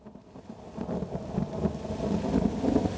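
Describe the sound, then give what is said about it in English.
A steady, dense roar of heavy rain with gusting wind and low rumbling swells in Manila on the morning of August 13, 1898, building slightly over a few seconds with no voices. “Wind and rain rip through Manila as newly promoted Rear Admiral George Dewey's squadron bombards Fort San Antonio de Abad”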